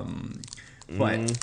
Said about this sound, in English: Are you typing? No. Oh, I was unwrapping another Andy's mint, actually.